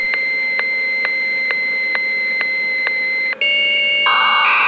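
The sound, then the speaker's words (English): A steady electronic phone-line tone with regular clicks as a telephone dials a bulletin board system, then a switch to shifting modem tones from a phone cradle device connected to a computer, ending in a harsh hissing screech, loud with no voices. “Someone who wanted to connect to the bulletin board system, or BBS, would dial its phone number and place their phone in a little cradle on a device connected to their computer.”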